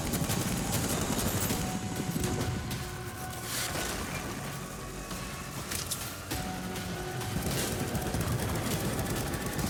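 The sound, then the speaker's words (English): Video game gunfire rattles nonstop in a dense, chaotic barrage, with sharp bursts layered over a loud, rumbling roar that never lets up for the whole clip. “Oh, it's just gonna be a cacophony of gunfire.”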